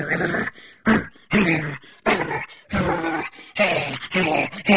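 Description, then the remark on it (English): A dog, Robo Cloco, barks and growls at Yeti guards in a rapid string of loud bursts separated by brief gaps, with rough snarling between the barks and no voices. “Robo Cloco jumped between the explorers and the guards, barking and growling.”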